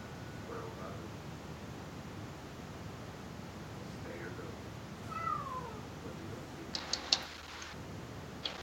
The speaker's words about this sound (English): I think Kitty said go.